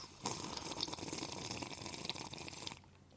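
A steady, wet slurping of water from a cup, lasting about two and a half seconds with a noisy, bubbling texture and small crackles, then stopping abruptly. No voices.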